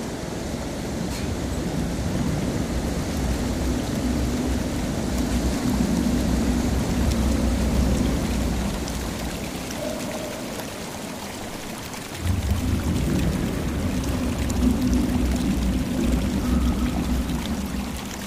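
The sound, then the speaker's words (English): The Marzyangdi mountain river rushes steadily and loudly, a dense continuous roar of churning water, briefly dipping around twelve seconds before surging back at full force. “The river.”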